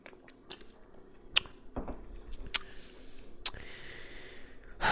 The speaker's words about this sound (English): Let me take a sip of my Boneyard beer. 6.5%.